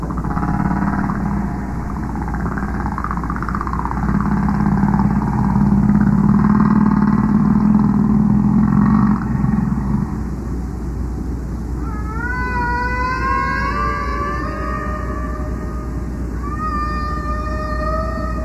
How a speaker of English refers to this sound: whale's voice, and you hear echoes from the bottom of the waves and the bottom of the sea.